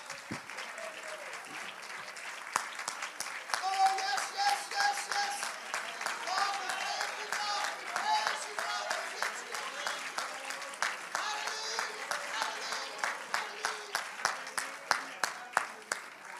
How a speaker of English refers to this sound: Let's give the Lord a great big loud hand clap of praise because he's worthy.